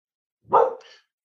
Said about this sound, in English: And there goes my dog.